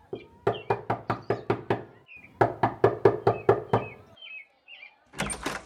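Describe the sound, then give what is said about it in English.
Two bursts of rapid, sharp knocks on a wooden door, about eight raps each, separated by a short pause, fairly loud, followed by a brief rustling noise. “I took a step back and I knocked on the door.”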